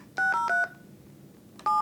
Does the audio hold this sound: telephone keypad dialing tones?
yes